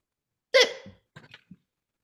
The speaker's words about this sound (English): Yawns and hiccups. We've got all the sound effects tonight.